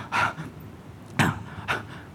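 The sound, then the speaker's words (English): A voice imitates a woman athlete panting heavily as she is interviewed with a microphone: three loud, rhythmic gasping breaths spaced about half a second apart, with no words spoken. “And so they interviewed her, they stuck the mic in her face, and she's breathing, she's panting away.”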